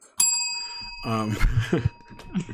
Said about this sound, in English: So, and my synchro. I got the synchro bell, too.